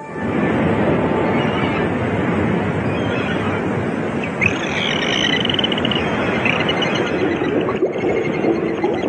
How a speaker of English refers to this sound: A live feed from the Atlantic Ocean.